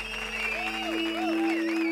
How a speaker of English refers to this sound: The room erupted into raucous cheering.